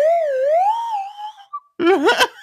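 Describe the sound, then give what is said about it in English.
A voice imitates a slide whistle with a smooth tone that glides slowly up and back down, then, after a short pause, a rougher, warbling burst that wobbles rapidly in pitch. “So that mean I get the kinky slide whistle then?”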